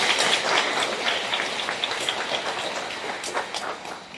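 An audience applauds to congratulate the two newly introduced leaders of the mothers' group: dense, steady clapping with a crisp, crackling texture holds for about four seconds, fairly loud and easing slightly toward the end, with no voices over it.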